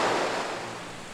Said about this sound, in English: As soon as the last person stepped onto the Jordan River's western bank, the water rushed back into place.